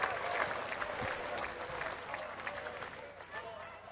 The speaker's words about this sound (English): More applause. Thank you. I swear every time I skip forward, I just got applause.